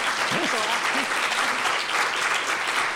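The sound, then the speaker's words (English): An audience claps steadily for a few seconds to show they have seen the movie, a dense, even wash of applause with a few voices calling out faintly underneath. “Applaud if you have.”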